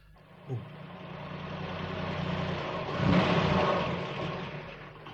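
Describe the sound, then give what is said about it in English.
The mayor's car engine starts up and revs, the low rumble swelling to a peak around the middle before easing as the vehicle pulls away to head over to the post office, steady. “Well, speaking of itching to get there, let's jump back into our mayor's car, and we'll go head over to the post office.”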